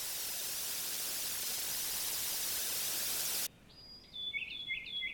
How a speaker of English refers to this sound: And as you walk into the scene, the static starts to become more intense and the horrific scene from the fair starts to dissolve.